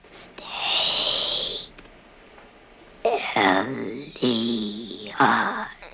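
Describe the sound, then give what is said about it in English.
A strange creature-like breathing sound made by mixing a human voice, electronically lowered in pitch, with recorded animal inhales and exhales: a long airy hiss of an inhale, a pause, then raspy, voiced wheezing exhales with warbling tones, fairly loud, with no speech. “I would mix her voice with the breathing or the inhale and exhale of one of the animal sounds that I had recorded, something that was sort of non-human.”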